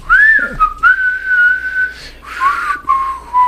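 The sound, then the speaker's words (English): A person whistles a short tune, holding long steady notes with a few slides and breaks between phrases, with some breathy noise and no talking. “Well, my whistling was fantastic.”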